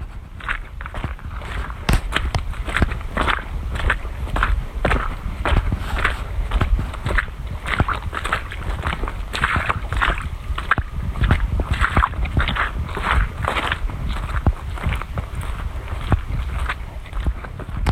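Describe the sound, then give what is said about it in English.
Squelching footsteps tread steadily through wet mud by the Muscatatuck River, each step a soft, sucking slap in a continuous rhythm, with light outdoor ambience and a faint watery background. “You've been listening to Footsteps in the Mud by the Muscatatuck River.”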